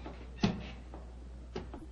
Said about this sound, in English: Holmes, Holmes, look up there, the gallery. The door's opening.